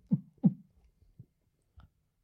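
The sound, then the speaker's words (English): A deep, booming heartbeat sound effect from the Demon Finn Balor entrance theme, heard at a wrestling event as the lights went red after a match: one strong lub-dub double thump, followed by a few softer, scattered low thuds fading into near silence. No one speaks. “It's the heartbeat from the Demon Finn Balor theme song.”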